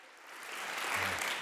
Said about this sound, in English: Weren't they good? Y'all give them a round, one more hand of applause.